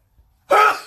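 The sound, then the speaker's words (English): A single sneeze caused by springtime allergies bursts out of near silence: one sharp, loud, explosive blast of breath that quickly fades into a short breathy tail. “I feel another sneeze.”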